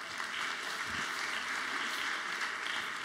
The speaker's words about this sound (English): How about a round of applause for the misfits, oddballs, and eccentrics?